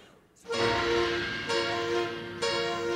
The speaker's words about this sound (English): Now, are these supposed to be animal noises? Because there's a debate whether it's someone's stomach before they have to poop or whales. Right? You know what I'm saying? It's supposed to be whales.